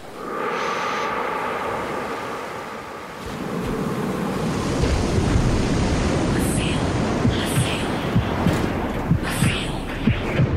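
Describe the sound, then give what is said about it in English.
Ocean waves surge in with a loud, broad rushing wash that swells after a few seconds, then keeps rolling and fizzing with scattered splashes as the surf pulls back out. “The waves of past love crashing violently in, quietly roll out.”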